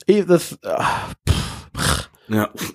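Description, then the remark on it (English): Heavy breathing right up against a microphone, done as ASMR: a run of loud, breathy huffs, some with short voiced grunts, coming in quick uneven bursts with brief gaps between them. “So we turned this into an ASMR. We're just doing breathing.”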